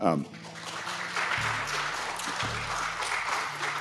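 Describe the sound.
An audience at an event with politicians speaking claps steadily for the whole stretch, a dense, crackling wash of many hands at even loudness, with a few voices murmuring and calling out underneath.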